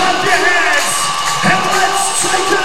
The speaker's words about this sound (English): 36ers crowd just started to whip themselves into a frenzy.